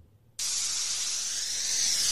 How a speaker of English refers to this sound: That doesn't really sound like the shower to me. Who takes showers that sound like that? It sounds like a hose.